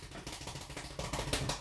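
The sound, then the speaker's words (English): A deck of playing cards being shuffled during a card trick, a continuous crisp papery flutter of rapid snaps that grows a little louder toward the end, with a few sharper bursts. No one speaks. “And while you do that, I will shuffle the deck very eloquently, if I might add.”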